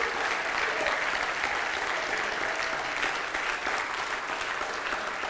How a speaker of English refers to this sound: Oh, give the Lord a hand clap of praise here tonight.